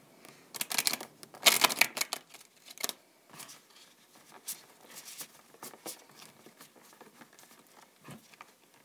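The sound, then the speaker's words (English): Tarot cards being shuffled for a reading, a quick flurry of papery riffles and snaps early on, then softer, irregular slides and taps continuing through the rest, with no voices. “I'll just shuffle it again with the intention of your question.”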